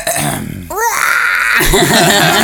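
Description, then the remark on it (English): A person's voice imitates a red-tailed hawk screech, a loud, raspy cry with a quick pitch swoop, followed by a rough, wavering vocal sound, with no speech. “You know, the ones that circle around, like red-tailed hawks that, you know, we think of typically, that do the loud screech, which, by the way, what does it sound like?”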